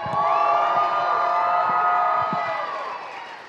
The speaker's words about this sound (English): And it was, and it was, and it was, somebody shout and clap and praise the Lord right now.